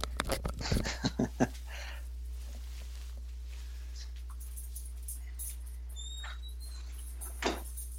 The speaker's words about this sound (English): Before we continue, I'll let my dog out of the room since he's whining.